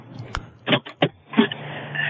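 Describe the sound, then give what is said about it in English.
Inside a car, a click and a few short mechanical bursts give way to a steady whirring, like a power window motor running, over a low interior hum. “I'm in my car.”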